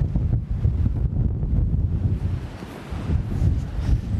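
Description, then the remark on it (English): Wind buffets the microphone outdoors in a steady, rumbling roar for a few seconds, loud, with low blustery swells and no voices over it. “Yeah, it's gone a bit windy, isn't it?”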